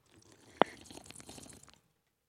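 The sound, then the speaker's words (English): A single sharp sip of LaCroix sparkling water snaps in, followed by about a second of soft, bubbly gurgling of the water, fairly quiet and wet with fizzy crackle, then silence. “I kind of gurgled it a little bit.”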